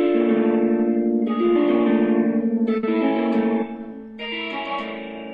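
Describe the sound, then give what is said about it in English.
An electric guitar rings out a close-voiced chord, strummed with the pinky, four times, each strum sustaining and blending into the next, coloured by lush reverb and light, warm distortion. No one speaks. “I don't want too much distortion for that chord.”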